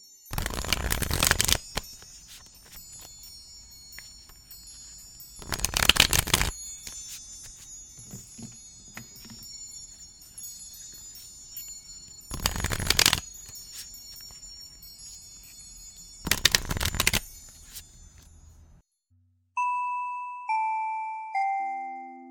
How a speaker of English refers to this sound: So I thought this would be a fun match to the Pinoy Practical Magic Tarot deck. And let's start shuffling our cards.